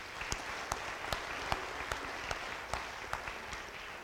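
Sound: audience applause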